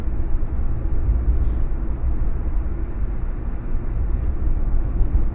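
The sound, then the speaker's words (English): A steady, low rumbling drone of an old car's engine heard from inside as it drives, continuous and fairly loud with dense low-end noise and no voices. “I honestly don't think I'll be able to make it to work and back in this thing.”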